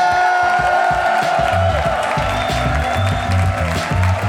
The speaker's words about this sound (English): Couldn't do a show without him. Lord knows he needs to hear you give him some claps when he gets out here.